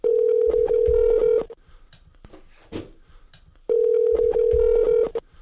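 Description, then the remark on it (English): A telephone ringback tone buzzes twice as a call is placed, each ring lasting about a second and a half, separated by a pause with faint clicks. It is loud and steady, with no talking. “So let's see if we can get her on the phone and have a chat with her.”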